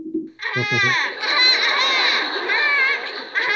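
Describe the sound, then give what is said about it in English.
A person's voice imitates a honk, the honk made by the character Leonard: one long, loud, nasal, strongly harmonic blare held for about three seconds, wavering slightly in pitch, after a brief low murmur at the start. “That's a pretty good honk. Yeah, pretty good imitation.”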